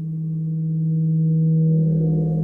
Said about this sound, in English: the very first thing you hear is kind of spooky, rubbing a gong, eerie atmospheric noises under the main titles. Yeah, this ambient stuff for the main titles, right.